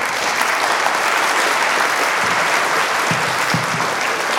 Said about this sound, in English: Ladies and gentlemen, give it up for Jeremy Siegel again. He needs to hear the applause.